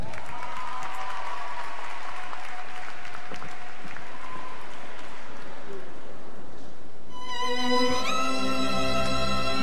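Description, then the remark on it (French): An audience claps steadily for about seven seconds as a singer is welcomed on stage for a duo, a dense crackling wash of applause, before it gives way to music with sustained, rising tones that may be a voice or an instrument. “Mesdames et messieurs, sous vos applaudissements,”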